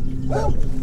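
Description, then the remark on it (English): A dog lets out a single short, whining bark that rises and falls in pitch, over a steady low rumble in the background. “Mind the bloody dog.”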